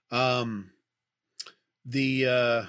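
A single short, crisp click from a gadget pencil lands in a quiet gap, framed by two long, sustained vocal sounds before and after it.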